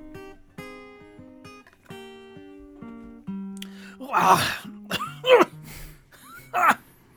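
Three loud, harsh coughs from someone who was sick burst out right up close to the microphone, spaced about a second apart, after a few seconds of quiet steady tones.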